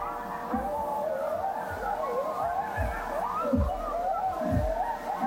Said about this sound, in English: There's a huge pack of coyotes that live in my neighborhood, and they were having kind of a New Year's party.